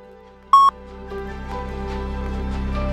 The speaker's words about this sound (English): Speak to me after the beep. Thank you so much.